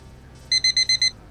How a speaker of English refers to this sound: Oh, it's beeping. Okay, that's the thing that this does.